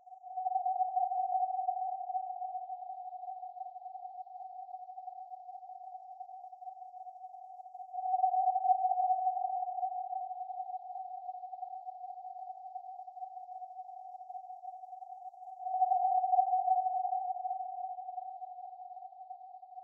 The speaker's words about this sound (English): Next, I added this really ghostly sounding synth part to really drive home the haunting atmosphere.